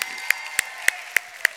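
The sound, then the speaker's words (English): An audience claps hands in unison to give God praise, five sharp, evenly spaced claps in a quick steady rhythm over a continuous murmur of background sound, with no one speaking. “If you believe that, can you clap your hands and give God some praise in here?”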